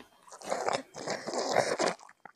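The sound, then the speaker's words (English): Wet slurping and smacking as someone eats red jello, a steady run of sucking mouth noises for a couple of seconds, with no talking. “What are y'all slurping on? Jello.”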